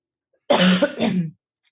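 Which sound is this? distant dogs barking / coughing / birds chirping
coughing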